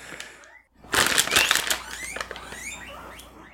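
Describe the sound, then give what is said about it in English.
Guinea pig treats being pulled out: a loud burst of crinkly, crunching packaging rustle lasting under a second, followed by softer scattered rustles and light rattling, with no talking. “They heard me get the treats out.”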